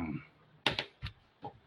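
Several short, bright metallic jingles and clinks as a set of keys to a speeder is shaken and handed over, fairly quiet, with brief pauses between them.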